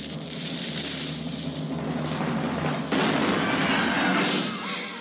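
A cannon fires with a long, rumbling, hissing roar that swells abruptly louder about halfway through, then trails off, with no one speaking.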